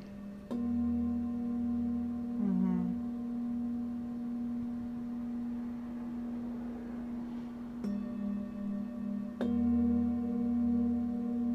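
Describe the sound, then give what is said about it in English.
A small singing bowl, placed on a person's sternum, is struck three times, once at the start and twice near the end. Each strike leaves a steady, shimmering low hum with bright overtones that rings on between strikes. “And then it's kind of that like church bell sound.”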